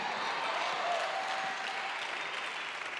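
An audience at a church sermon applauds steadily, a dense wash of many hands clapping at an even level throughout, with a faint whistle-like tone briefly riding above the noise.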